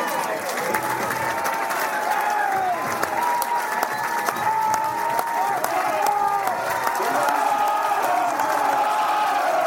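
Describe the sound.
A large crowd at a rugby semi-final between Connacht and Glasgow, with the terraces behind the goals and the stands full, roars steadily: a dense wash of many voices chattering and calling out, with scattered clapping and whoops rising above it, loud and unbroken throughout.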